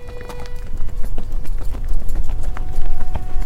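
Horse hooves clip-clop steadily on hard ground as a rider on a young horse rides off at about 11 o'clock, a quick, regular beat that continues throughout without any talking, set against a faint background hum.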